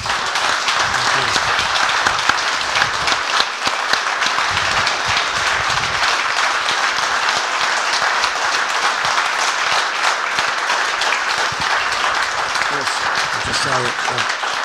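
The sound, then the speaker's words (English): An audience claps and applauds steadily for about fifteen seconds, a dense, even roar of many hands, with a few faint voices murmuring underneath. “I think that definitely deserves another round of applause, ladies and gentlemen.”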